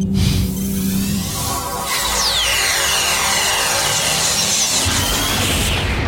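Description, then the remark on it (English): A loud, sustained explosion roars on for several seconds, a dense rumbling blast with whooshing, sweeping tones rising through it midway. No one speaks. “That was a loud explosion.”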